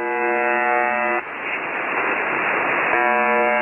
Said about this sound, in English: This is a recording of a shortwave radio station that's commonly known as the buzzer.